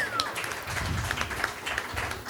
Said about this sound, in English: So, all right, give them a round of applause. Round one.